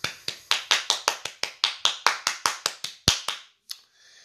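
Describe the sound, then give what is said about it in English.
A single pair of hands claps in a brisk, steady rhythm in applause for the TV show Glee, about fifteen crisp claps, then stops with one or two final claps and no voices. “You guys, I'm going to applaud Glee.”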